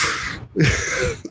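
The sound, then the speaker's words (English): A voice mimics taking a medical cannabis nasal spray with two sharp, breathy sniff-like bursts separated by a brief pause, fairly loud, the second carrying a slight throaty grunt. “Nasal sprays and stuff.”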